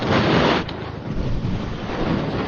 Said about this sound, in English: For future recording, that is a cat rubbing furriness all over a microphone.